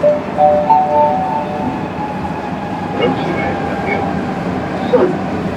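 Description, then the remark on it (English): Steady rumble of a Madrid subway train heard from inside a moving car, with a faint electric whine, occasional metallic clanks, and muffled voices in the background. “We are on board of Madrid's subway to give our score on transportation accessibility.”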